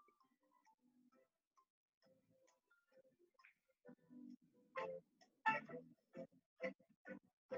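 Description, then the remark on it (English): Countdown clock music, played while quiz players wait on their wagered answers, with a soft, sparse melody that gives way to steady, evenly spaced ticks growing more prominent toward the end, fairly quiet and with no voices. “We're going to let the clock milk out.”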